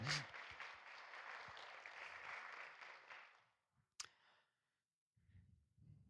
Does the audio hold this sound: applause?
yes